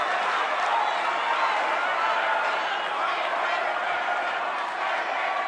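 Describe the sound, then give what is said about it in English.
A large convention crowd shouts and calls out together in a loud, steady roar of many voices, urging speaker Ted Cruz to endorse Trump, without pause for several seconds. “crowd urging Cruz to endorse Trump, which he hasn't done yet.”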